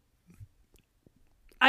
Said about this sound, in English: I think it's a chip, to be honest with you. It is 100% the texture of the chip. It is a very loud and crunchy chip.